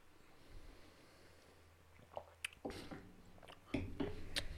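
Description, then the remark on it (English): Someone takes a second sip of an alcoholic drink: a few short, wet slurping and swallowing sounds, quiet and intermittent, with no talking. “I'll go for a second sip.”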